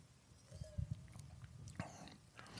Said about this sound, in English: So this is a wine. I'm going to take a sip. Hold on 1 second.